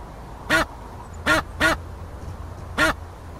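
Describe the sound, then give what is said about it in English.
Four short, nasal duck quacks ring out clearly, the first alone, then a quick pair, then a last one after a pause, over faint low background rumble; a duck's quack used as a goose's honk in a video game. “they had a honk in before I started working, and it was actually a quack from a duck.”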